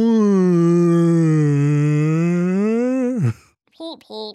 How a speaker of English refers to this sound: And it is buzzing over the field, scooping up everything edible as though it were krill in the water. Man, I know they said it was big, but that thing is huge. And the whale song echoes over the fields.